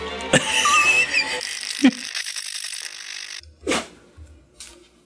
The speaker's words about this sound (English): God bless you. My dog just sneezed.